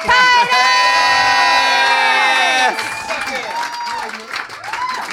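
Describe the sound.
An audience cheers and whoops loudly with many overlapping voices, under a wash of applause, for almost three seconds, then settles into scattered shouts and softer cheering, welcoming the last guest of a comedy show, a man from Werribee.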